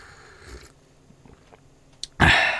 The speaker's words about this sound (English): Let me get this sip of coffee.